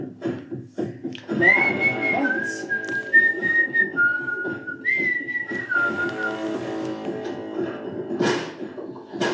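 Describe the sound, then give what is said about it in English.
A short whistled tune of sustained, sliding notes over a muffled background of noise and faint thumps, moderately loud, with no talking. “Oh, a musical interlude.”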